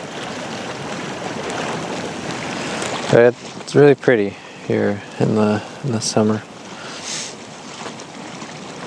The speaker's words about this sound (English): It's not, they're not very tall waterfalls. It's mostly like, it's like a split level waterfall, so it's kind of just like a grouping of cascades.